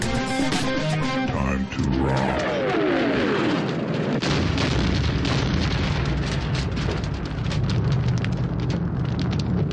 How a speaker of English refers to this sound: As the explosion tears through the Cobra Taco Shack, can things get any worse for a gunplay-happy heroes?